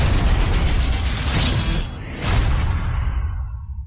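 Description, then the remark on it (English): A loud, crackling lightning bolt spell blast from the film Knights of Badassdom roars in two broad surges, each swelling with a whooshing sweep, then trails off into a thin, fading hiss. No voices are heard. “Lightning bolt! Lightning bolt!”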